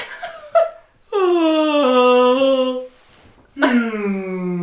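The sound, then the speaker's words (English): A voice imitates a whale call with two long, moaning tones that slide downward in pitch, loud and sustained, separated by a brief pause, after a couple of short lead-in sounds. “That's more like a whale, honestly.”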